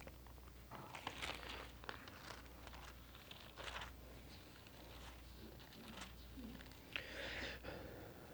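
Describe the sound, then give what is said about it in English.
Soft, scattered paper rustling and flipping as an audience turns the pages of many paper Bibles at once to John 16 during a sermon, quiet, with brief crinkly bursts and a low hum underneath and no talking. “I love to hear those pages flipping.”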